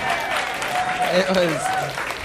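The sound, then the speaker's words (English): An audience claps steadily for about two seconds in applause for a rhyme, a dense, even wash of applause with a voice briefly rising above the clapping. “You're welcome to applaud for that rhyme.”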